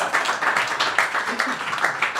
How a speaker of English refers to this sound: Yeah, second round of applause. Oh, yeah. My God.